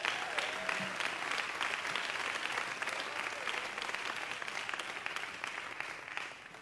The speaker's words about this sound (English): Would you give that God a hand clap?